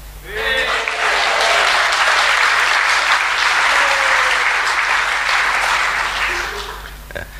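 audience cheering and applauding

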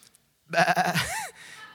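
sheep bleating

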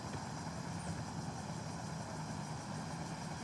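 car engine idling

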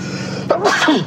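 sneeze

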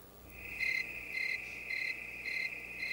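loud cricket chirping

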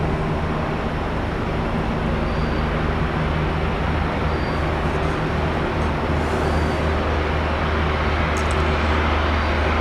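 helicopter flying overhead

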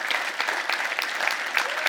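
audience hand clapping

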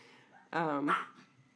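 dogs barking

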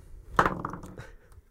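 dice being rolled

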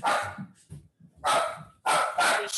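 dog barking

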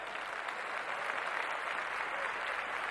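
applause

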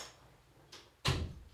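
door being closed

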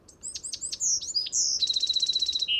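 bewick's wren singing

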